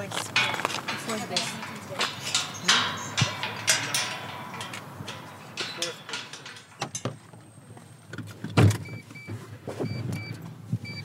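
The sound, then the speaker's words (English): Steady road and engine rumble from inside a moving Mitsubishi Colt car, with scattered clicks and knocks from the cabin and a faint murmur of voices underneath. “We kept this car just for the fishing before the war.”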